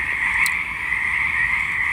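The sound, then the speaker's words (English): A dense, continuous chorus of frogs croaking outdoors by a pond with low water, a steady trilling drone with many overlapping voices at moderate loudness, with no talking. “It's hard to express how much I miss the frogs. I'm kind of amazed they're back because there isn't that much water in the pond.”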